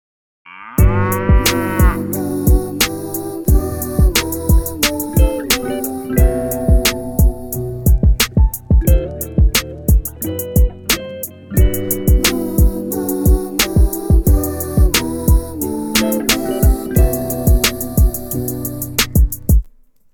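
A bouncy R&B track with punchy, steady beats and layered synths, where a voice imitates drawn-out cow moos over the groove, loud and up front throughout.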